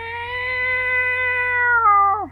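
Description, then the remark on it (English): A person imitates a yowling cat with one long, steady, drawn-out wail that bends downward in pitch at the end. It is loud, with no other talking. “just the sound effects and the imagination in my mind while drinking”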